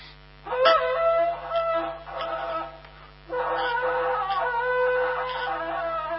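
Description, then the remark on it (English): A shofar horn is blown as the call for a feast, in three sustained, brassy blasts, the last one longest, each a buzzing tone rich in harmonics, steady in pitch with slight wavering, and no talking. “And that sounds, that was the sound, by the way, of shearing the sheep, as some of you saw. That is the call for a feast.”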